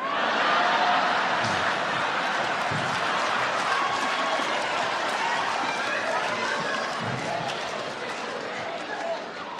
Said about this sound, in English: Everybody scream out when you hear your letter.